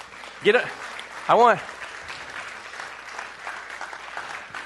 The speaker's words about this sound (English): Get all your clapping out right now. I don't want you to clap again for them till the end, okay?